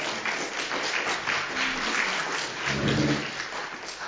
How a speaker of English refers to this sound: The applause may be a little premature.